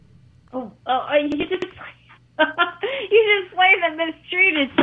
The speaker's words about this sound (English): Okay, I'm gonna play this for you, but I'm gonna get going here because we're breaking up really bad now. You're like stuttering now.